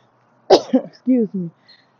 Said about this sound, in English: Excuse me, y'all. This workout this morning got me coughing, got my lungs open.